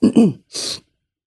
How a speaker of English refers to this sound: Oh, I'm trying not to sniffle into the mic. Sorry.